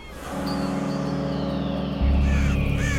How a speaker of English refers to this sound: Send the birds away, Soleil.